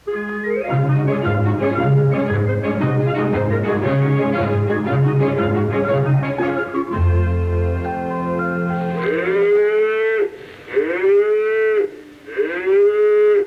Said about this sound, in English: Well, darling, they're just cows. They're not bulls. They won't hurt her.